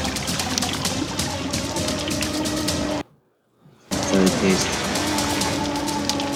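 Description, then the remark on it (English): Loud, continuous underwater bubbling and churning rush from a man screaming inside a shark cage, with muffled voices beneath it. The sound cuts out to near silence for about a second midway, then returns just as dense. “You hear the bubbles?”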